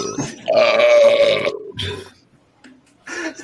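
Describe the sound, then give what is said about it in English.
A long, loud, rasping burp lasting about a second after chugging a drink, followed by shorter gurgling, strained retching noises and a gagging heave at the end. “Did you almost throw up?”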